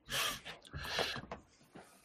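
A stifled, breathy cough held back in the throat, followed by a few short muffled bursts and sharp intakes of breath, fairly quiet.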